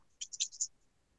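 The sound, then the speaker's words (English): New dice, used for the first time, are rolled for a stealth roll and clatter across a hard surface in a quick burst of four or five bright clicks over about half a second, then settle into quiet, with no talking. “Everybody do a stealth roll as you are making your way. Here we go. Debut of the new dice.”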